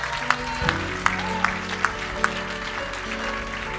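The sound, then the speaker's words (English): An audience claps for the Lord in a steady, even rhythm, roughly six synchronized claps, over sustained background music with a low hum of voices. “Come on, let's give the Lord a big clap and a shout.”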